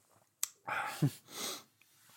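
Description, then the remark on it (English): A single sharp sneeze from a person: a quick intake of breath, a bright burst, then a hissy exhale, with a faint click beforehand and quiet room tone around it. “You just stopped because I sneezed.”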